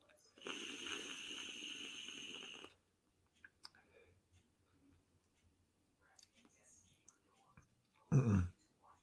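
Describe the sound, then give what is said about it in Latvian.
A vape coil, held up to the microphone, boils and bubbles for about two seconds, a dense crackling sizzle with a hissy edge. Faint scattered clicks follow, then a short loud puff of sound. “Bet nu viņš tur ritīgi vārās un burbuļo.”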